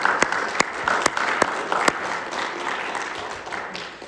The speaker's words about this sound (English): So I just want to take a moment and I want to give a round of applause to all the mothers and women in our lives who have made a difference.